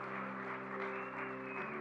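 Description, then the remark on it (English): A church audience claps by hand for those who have just prayed to follow Jesus, a dense, steady wash of applause lasting the whole moment, with a sustained keyboard chord humming underneath. No voices stand out. “Come on, let's give them a hand clap today.”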